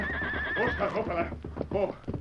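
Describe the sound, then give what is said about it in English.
Stagecoach horses whinny loudly as the coach is reined to a stop, a long wavering neigh followed by shorter snorting calls, with hooves clopping and shuffling underneath as they come to a halt. “Slowly but surely, the stage was brought to a stop. Then the Lone Ranger called out to Tonto, who sat holding the reins of the lead horses.”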